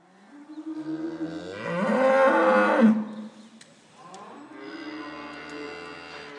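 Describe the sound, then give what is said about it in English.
Two long, loud moos from cattle kept indoors for winter at Walmead Farm in Tisbury, Wiltshire, in November, the first rising into a strained bellow and the second lower and steadier, with a slight roomy echo and no talking. “So the main happening is the hour change, because once winter starts, the cows are indoors.”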